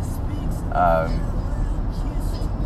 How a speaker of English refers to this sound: And you can see it if you're watching on video, all the cars that are passing me, right? There's all these different kinds.